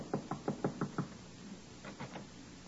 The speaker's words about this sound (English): As we rejoin Riley now, he is tapping a bit nervously at the door of Miss Jessup's apartment.